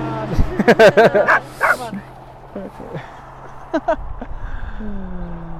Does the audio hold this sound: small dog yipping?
yes